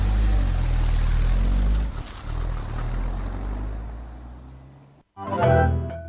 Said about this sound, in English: By the time the car had pulled away and the British petrol fumes had cleared enough to look